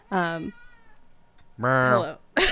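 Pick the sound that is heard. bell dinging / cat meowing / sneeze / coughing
cat meowing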